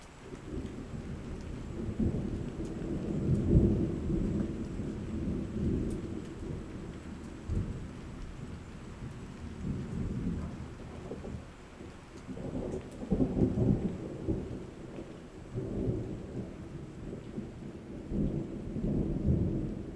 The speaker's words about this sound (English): Storms skim the horizon. My pulse speeds up as electricity builds in the air.